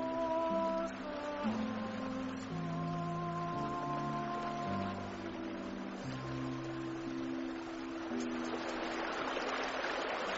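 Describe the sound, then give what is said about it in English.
Steady rushing water of a great, swift river flows beneath sustained, swelling orchestral chords, the watery hiss growing stronger toward the end. No one speaks. “She's too low in the water with all this baggage, and the great river is swift.”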